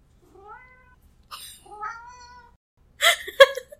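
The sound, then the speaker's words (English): A black cat meows several times in a row, drawn-out, wavering cries with short pauses between them. The final calls are the loudest and harshest. No one is talking. “When a black cat interrupts talking about wizards and witches.”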